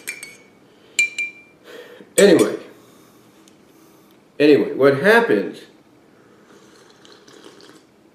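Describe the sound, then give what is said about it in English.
A few light ceramic clinks of a cup being handled and set down, with faint slurping of coffee between them, followed by a man talking. “give me a minute, just drinking some coffee to wake up.”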